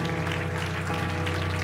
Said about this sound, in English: Give God a clap. Come on.